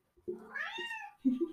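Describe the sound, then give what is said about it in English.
A tortoiseshell cat named Luna lets out a drawn-out meow that rises and falls in pitch, followed quickly by a shorter, clipped second meow. No one speaks. “Actually, she's a tortie cat, so she's just as chatty.”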